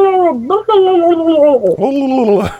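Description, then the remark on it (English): For Turkey Day, a person imitates a turkey gobble with a loud, warbling voice, sliding up and down in pitch across three or four connected phrases, with no other sounds around it. “That was my attempt at a turkey.”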